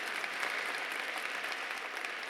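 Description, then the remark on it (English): A church audience claps steadily, a dense, even wash of applause from a sizable audience with no pauses and no voices standing out. “they didn't clap first hour, so let's make sure that they, just kidding.”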